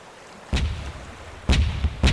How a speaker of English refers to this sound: At 9 o'clock a.m. on the 27th of August, 1896, three British ships opened fire on the palace.